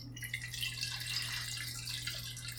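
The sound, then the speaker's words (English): Rodinal film developer, diluted 1 plus 25, being poured into a developing tank holding Kodak T-Max 100 black-and-white film: a steady hissing trickle of liquid that runs continuously without pause, over a faint low electrical hum. “Are you ready to pour in the developer?”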